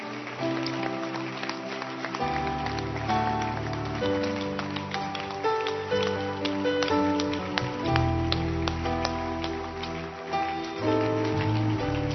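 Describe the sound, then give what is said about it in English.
Several people clap their hands for Jesus in a steady, uneven patter of sharp taps, running continuously under a sung or musical tune with sustained pitched tones. “Go and sing that song again. Keep clapping your hands.”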